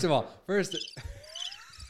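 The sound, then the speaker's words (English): A brief burst of voice gives way to a faint, steady high chirping of crickets, thin, with a low tone rising quietly underneath. “Those crickets are drowning.”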